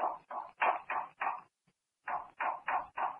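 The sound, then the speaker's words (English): A patterned series of knocks, five in quick succession, a short pause, then four more, moderately loud and slightly hollow, as if someone were tapping out a signal. No voices. “That knocking, almost as if someone were trying to signal.”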